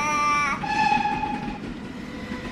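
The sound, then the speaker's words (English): A train rumbles along the rails, with a loud, sustained horn blaring over the steady rolling noise for the first second or so. No one speaks. “To help cope, 500 train carriages are being turned into hospital wards right here in the capital, New Delhi.”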